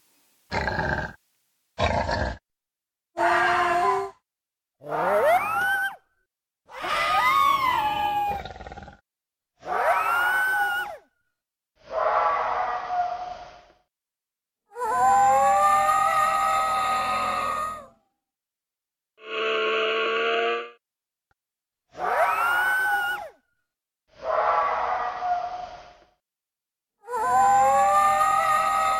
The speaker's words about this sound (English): And hear the sounds of the Tasmanian tiger, recorded in captivity almost 100 years ago.